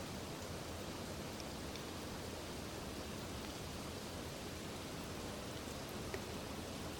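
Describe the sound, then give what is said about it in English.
Steady rain falls without a break, a dense, even hiss spread across the whole range, constant, with no voices or other distinct sounds. “And yet, just in this nature, like this rain, it's offering this Dharma talk.”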